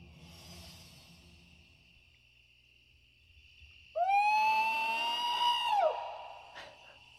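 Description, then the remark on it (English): A purported Bigfoot call done by the people on an old TV show about finding Bigfoot: one loud, drawn-out howl lasting about two seconds, swooping up then holding a steady, wavering pitch before dropping off, after a stretch of faint background hiss. “That's the call that these guys do.”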